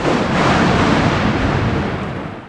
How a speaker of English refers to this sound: A crack of lightning made us all jump.